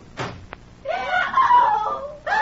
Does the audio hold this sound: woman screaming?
yes